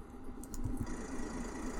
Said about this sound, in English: Can you hear that, listeners? This is my truck. It's got no trailer on the back. It's just a cabin on wheels.